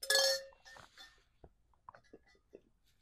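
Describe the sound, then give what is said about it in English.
A glass clinks sharply with a brief ringing tone, followed by a string of soft, irregular gulping and swallowing sounds as someone drinks water quickly. “Bro, you like chugged that.”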